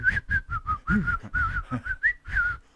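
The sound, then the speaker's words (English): A person whistles a bright, bouncy happy tune in a rapid string of short, clear notes that rise and fall, fairly loud, with no talking over it. “And it's virtually impossible to be cut and upset when you're whistling a happy tune.”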